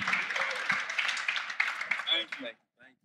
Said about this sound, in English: Thank y'all for coming out. Give a round of applause for yourselves. We appreciate y'all.